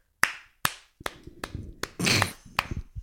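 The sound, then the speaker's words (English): A voice imitates rhythmic slapping claps, the sound of two people having sex heard in a restroom while washing hands: about seven sharp, loud smacks in an uneven beat, with a breathy, noisy burst partway through and no words spoken. “Like, motherfucker is clapping cheeks.”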